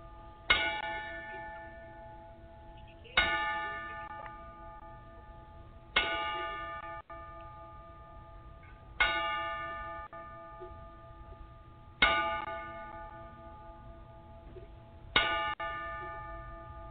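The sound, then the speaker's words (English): A ringing bell is struck six times at slow, even intervals of about three seconds, each bright clang sustaining and fading before the next, with no talking, as a ten-bell salute in memory of a promoter who had passed away. “So, I'm going to ask everybody to take a moment and be of silence here so we can give a 10 bell salute.”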